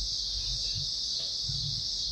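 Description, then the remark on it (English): A steady chorus of crickets chirping, a continuous high trill that holds evenly for a couple of seconds over a faint low rumble, with no voices. “Crickets.”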